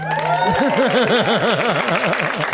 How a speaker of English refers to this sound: Some of you looked at me like, "We're doing this? We're doing the double applause?"